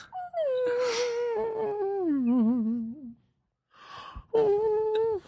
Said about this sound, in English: Violin, bow, and a saw.